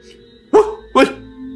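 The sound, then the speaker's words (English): A small dog, a dachshund, lets out two sharp barks in quick succession, about half a second apart, with a faint steady hum in the background and no talking. “because I'm seeing a floating dachshund sitting here wearing a cape, talking about how cats can't speak, and talking to his human like his human's a dog.”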